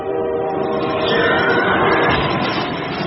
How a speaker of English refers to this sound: I'm going to stand in the path of an oncoming freight train and not move! I wonder what will happen!